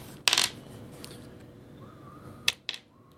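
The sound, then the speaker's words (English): Thunder dice in a board game clatter sharply as they are picked up: a bright burst of rattling near the start, then two quick clicks a couple of seconds later, with no talking. “And then I get 3 more thunder dice.”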